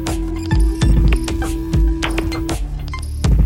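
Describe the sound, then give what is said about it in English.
A steady, mellow triangle-wave tone, produced electronically by one of a synthesizer's oscillators, holds one mid pitch for about two and a half seconds, while loud metallic clinks and clatters strike irregularly around it. No one speaks. “Another oscillator produces a triangular wave.”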